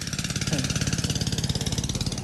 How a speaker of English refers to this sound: We tracked the sound of Shanfan equipment to another part of the Enuru River.